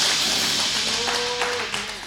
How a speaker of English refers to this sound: Come on, give Jesus one more good hand clap if you would.